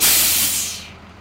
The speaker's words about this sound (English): As we arrive at the school, buses are dropping students off in the slush and snow.